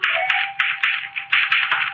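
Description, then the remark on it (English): Sharp mechanical clacks of a typewriter at an uneven pace, struck over a steady bright whirring hiss, with no voices. “Look, the typewriter. It says, read it.”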